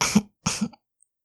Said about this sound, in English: The little cough you make as you spit might come out.